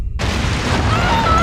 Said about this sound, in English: Lightning! Ah! Hey, be careful casting your spells!